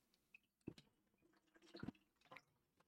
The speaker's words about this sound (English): And hold on a minute. Let me take some water.